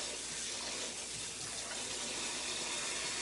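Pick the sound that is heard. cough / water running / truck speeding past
water running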